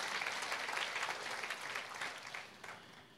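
An audience claps for God together in a steady, dense burst of applause that holds fairly even for a few seconds before thinning slightly toward the end, with no voices standing out.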